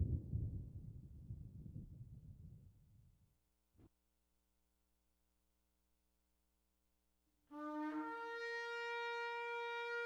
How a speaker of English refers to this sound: What noise? The thunder. The thunder. Yes, the thunder. Right? Thunder. Anything else? Lightning and thunder.